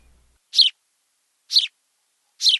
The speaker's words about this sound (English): The house sparrow basically chirps constantly. It sounds just like a little bird chirping away. Let's listen.